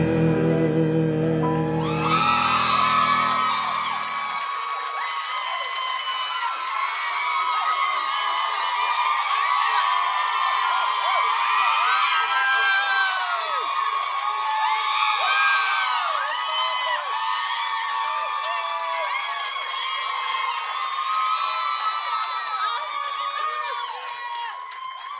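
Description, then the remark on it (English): A large crowd cheers and hoots without pause, a dense wash of high, shrill voices with whoops rising out of it, loud and steady after a brief low rumble at the start. “Somebody was hooting from the side.”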